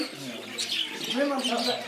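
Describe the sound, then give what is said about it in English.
A zebra finch in a walk-in aviary chirps in a quick run of thin, high peeps, moderately loud, with a low murmur of voices and softer bird calls underneath. “That's the zebra finch that Andy was talking about.”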